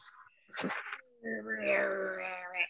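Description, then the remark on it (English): Someone blows their nose: a short, breathy burst of air, then a sustained buzzy honk with a steady low pitch that lasts over a second before cutting off. “Lordy, I'm going to blow my nose now that we're recording.”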